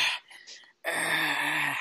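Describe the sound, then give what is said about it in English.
A person imitates heavy breathing, fairly loud: a quick breathy huff, a brief silence, then a long, strained, voiced exhale with a groaning edge. “Is he breathing hard?”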